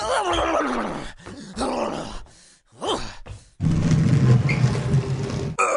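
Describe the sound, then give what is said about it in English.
Stan Lee lets out a series of loud, straining groans and grunts, short strained bursts with rising and falling pitch, ending in a long rough, effortful groan as he picks up a couch, puts it on his back and moves it from the living room to the den. “Stan Lee is actually picking up your couch and putting it on his back. He's moving it!”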